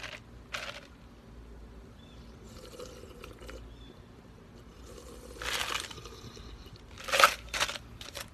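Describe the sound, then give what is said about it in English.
A drink's top is twisted off in a few short, crinkly plastic bursts spread across a quiet stretch, with faint liquid sloshing in between and no one talking. “I'm gonna have to take the top off.”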